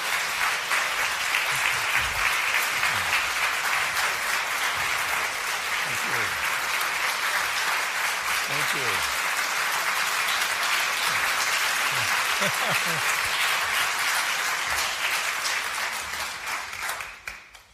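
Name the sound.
audience applause welcoming speakers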